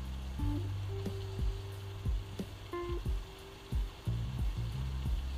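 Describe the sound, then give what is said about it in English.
A steady, hissing sizzle of onions and garlic frying in a pan, recorded with a phone held right up to it, with a low hum and occasional light clicks and scrapes of stirring. “Starting to hear a little bit of a sizzle here.”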